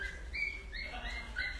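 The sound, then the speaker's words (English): A dog whimpers in a string of thin, high-pitched whines, rising and falling several times, fairly faint against a low, steady background rumble. “Well, they took one of the dogs. Oh, they took one of them? Yeah, that's why he's wanting that.”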